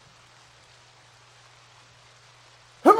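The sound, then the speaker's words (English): Quiet room tone with a low hum, then a single loud, sharp sneeze bursts out right at the end, cut off abruptly. “hold on, I gotta sneeze.”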